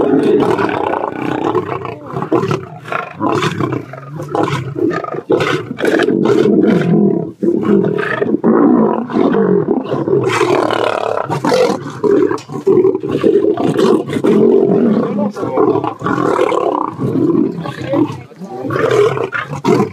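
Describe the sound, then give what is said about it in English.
A lion roars loudly and continuously, deep rumbling growls rising and falling in repeated bursts, dominant throughout with no other sounds. “our enemy is like a roaring lion looking who he can devour. Go ahead and play that video clip.”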